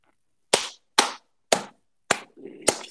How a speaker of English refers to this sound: We get a round of applause for Japan. They didn't fuck up.